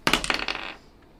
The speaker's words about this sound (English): Oh, that one landed on top of the other dice. Oh man, I rolled pretty well.